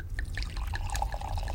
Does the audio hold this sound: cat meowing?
no